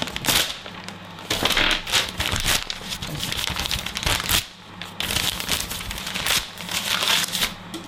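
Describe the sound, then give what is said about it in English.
Continuous crinkling and crushing of paper, loud and busy for several seconds, with brief pauses and sharper rustling bursts as sheets are wadded up and thrown at people. “Stop throwing paper at people.”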